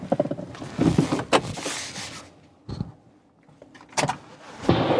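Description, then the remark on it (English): Several sharp, cracking gunshots ring out at irregular intervals, each a brief loud bang that quickly fades, over a low background rumble. “I just heard a gunshot.”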